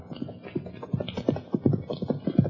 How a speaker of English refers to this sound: Hopalong Cassidy and his sidekick, California, have just turned their horses into the corral and are heading for the Bar 20 ranch house when a horse and rider bear down on them at a fast gallop.